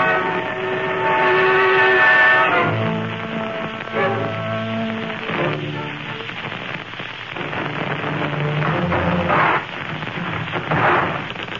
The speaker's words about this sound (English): Here you are, Sherlock. All we got is a tri-motor plane.